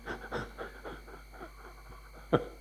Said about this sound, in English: You know, when you go to school, I tell you, here is your lungs, little sacs inside your chest, there's your nose, that's it. Suck it in, blow it out.